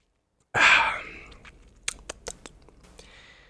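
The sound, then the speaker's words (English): A short slurping sip of wine cellared and bottled by Bully Hill Vineyards in New York, followed by a few small wet mouth clicks and lip smacks, with no talking. “I'm just going to take a sip here.”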